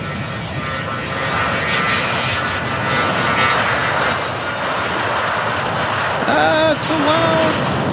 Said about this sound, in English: There's the mad dog taking the runway, applying takeoff thrust. Familiar? Yeah, it does sound familiar,